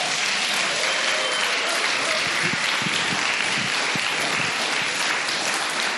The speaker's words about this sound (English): So clap your hands together for him.